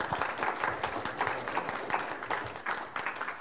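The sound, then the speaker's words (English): Applause from an audience answering a question on how many of them watch Prime Video with audio descriptions: many hands clapping in a dense, steady patter for a few seconds at moderate volume, with no one speaking over it. “I'd love to just get a sense from the audience with your applause.”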